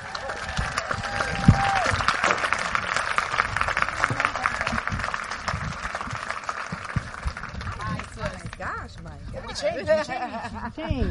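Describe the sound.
A large audience claps and cheers loudly and steadily for several seconds, then the applause thins out as excited voices and whoops rise near the end.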